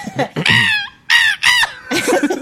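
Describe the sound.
A voice imitates Star Wars laser blasts with four or five loud, harsh, squawking bursts, some sliding downward in pitch, separated by brief pauses, almost like a crow cawing.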